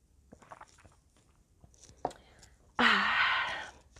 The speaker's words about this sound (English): Gonna take a quick sip of water before we dive in.